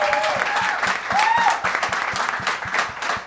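An audience breaks into steady applause, a dense wash of many hands clapping at a constant loud level, with a few brief cheers or whoops rising above it.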